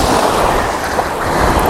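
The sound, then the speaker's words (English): A steady, loud rush of sea waves breaking on the shore, a dense hissing roar of surf with no voices, filling the whole short moment without a clear pause. “So I don't think I'll get the kind of the curving, but if I get some of that lovely sea spray and foam, that'd be grand.”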